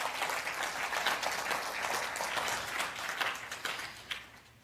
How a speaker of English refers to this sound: Give the Lord a loud hand clap.